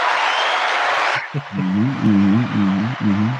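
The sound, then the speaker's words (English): A dense burst of lively, enthusiastic studio audience applause and cheering on a show, as a guest is welcomed in, fills the first second, then cuts off abruptly as a man begins speaking. “The crowd on this show is quite lively. So, very enthusiastic.”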